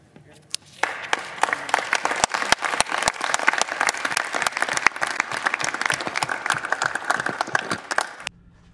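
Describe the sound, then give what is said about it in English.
Politicians in a chamber applauding a woman who has just spoken, with dense, steady clapping that starts abruptly, holds at a fairly loud level for about eight seconds, then stops suddenly. “The majority of these politicians are clapping for this lady because she decided to change her mind.”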